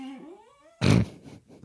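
A dog gives a short whining yelp that slides down in pitch, then lets out one loud bark followed by a quieter rough trailing grumble.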